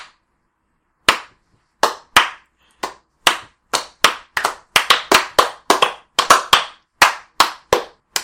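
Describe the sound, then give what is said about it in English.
A run of sharp, loud hand claps given in applause, about twenty in all, at an uneven pace that quickens in the middle before slowing again. There is no talking, just the crisp claps against silence. “I'm clapping to applaud you.”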